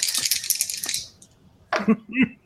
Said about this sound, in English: Give me a brains roll. All right. I'm not going to roll the same dice again because they can eat a dick.